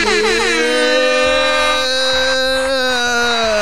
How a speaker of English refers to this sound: One more air horn for the people.